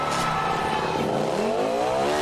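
A loud motorcycle engine revs hard before a jump, its pitch climbing steadily over a couple of seconds, with no voices over it; Travis Pastrana replicating Evel Knievel's famous motorcycle jumps in Las Vegas.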